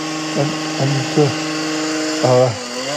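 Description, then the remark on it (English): A chainsaw used for gardening work in a garden runs steadily throughout, its engine note dipping and swelling in several quick revs, loud, with no one talking over it. “Thought it was the mower to start with, but apparently my dad's got him doing some gardening work, and has made the unfortunate decision to get some sort of chainsaw.”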